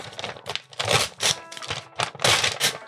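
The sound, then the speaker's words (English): Someone opening a packed glass vial holding a glowing blue potion: a run of crinkly, rustling bursts in uneven spurts, fairly loud, with short pauses between, like wrapping being pulled away. No talking. “So it's not broken, because it was in a glass vial. So hey, let me open it real quick.”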